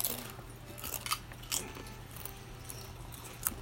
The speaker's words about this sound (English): Also, we're munching on some Siete grain-free tortilla chips. The squeeze of lime. That shit's good. Made with 100% avocado oil. Ooh, that's why they're so good.